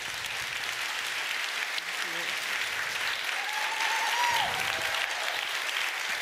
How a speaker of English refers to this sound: A big round of applause for our...